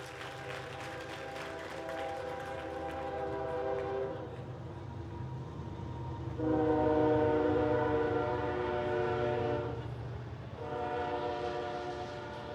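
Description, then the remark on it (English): A train passes with loud, sustained horn blasts, three long harmonic tones, the second strongest, over a steady rumble of rail noise, no voices present. “I know you all think that's the train.”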